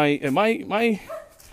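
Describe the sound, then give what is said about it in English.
A dog barks twice in quick succession, loud, each bark a drawn-out, tonal yowl, followed by a brief, fainter whimpering note as the sound trails off. “God, everyone's got a dog.”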